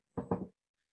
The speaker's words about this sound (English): Oh, yeah. The hiccups.